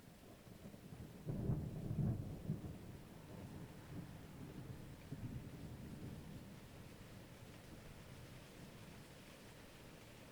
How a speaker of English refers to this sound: A gentle roll of thunder echoes in the distance.